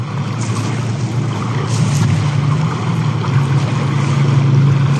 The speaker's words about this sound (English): The so-called Sea Baby experimental sea surface drones are seen being sailed across an expanse of water that look like small, gray-painted camouflage speedboats. And rather than having a seat for a driver, the watercraft has equipment on its surface.